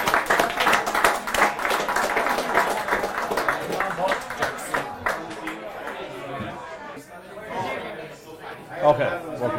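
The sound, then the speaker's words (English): An audience bursts into dense, rapid clapping for several seconds as four guests come up on stage, then the applause thins out and gives way to a loud murmur of crowd chatter. “A big round of applause, please, folks.”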